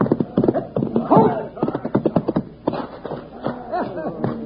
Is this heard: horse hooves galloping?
yes